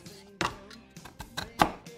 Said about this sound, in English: Let's cut a cube. Use a Japanese pruning saw.